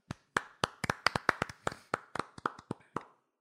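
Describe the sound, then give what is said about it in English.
A quick burst of hand clapping, roughly a dozen sharp claps in an uneven, lively rhythm, fairly loud and with no voices, trailing off after about three seconds. “Hey, I know we're a big clapping podcast, which is getting a little odd to a degree.”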